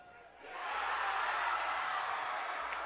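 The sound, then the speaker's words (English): A basketball arena crowd during Casey's second free throw in the Central Rebels vs MICDS state tournament game: a broad murmur of many voices swells within the first half second into a steady, loud roar that holds to the end. “The old broadcaster's jinx is not going to be blamed on me, so I'll just let you listen to the crowd, see what he does.”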